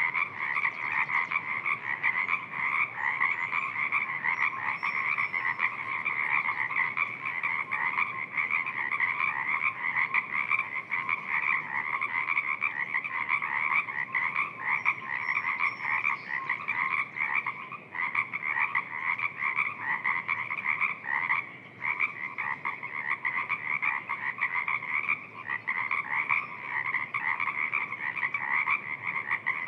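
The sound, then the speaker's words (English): A dense chorus of Pacific tree frogs calls nonstop, countless overlapping croaks blending into a steady, pulsing wall of sound from a marsh, with no voices present. “Listen to the Pacific tree frogs, so many calling from the marsh.”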